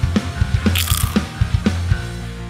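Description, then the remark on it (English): Loud crunching of a potato chip, with sharp crackly bites repeating in a steady rhythm about twice a second, and no talking. “Do I have to crunch it? You have to crunch it.”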